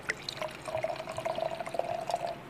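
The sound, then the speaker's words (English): Mead pours steadily into a glass for about two seconds, a continuous trickle with a rising tone as it fills, with no talking. “Okay, I don't think I've ever tasted mangrove, but let's do it. Yeah. Give it a pour.”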